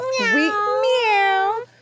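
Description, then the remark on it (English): A person's voice imitates a cat's meow, one drawn-out, wavering mew lasting over a second, loud, with no other talk around it. “People are like, why did she meow in the episode, in case people haven't seen that?”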